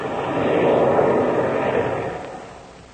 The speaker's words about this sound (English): Oh, hey, listen, Chuck, listen to that. Shark throttled his engines. We're going down to land.